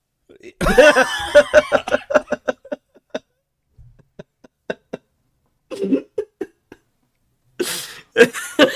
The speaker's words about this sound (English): Holy shit. Just choked. Okay, let's keep going. All I heard was a choking noise.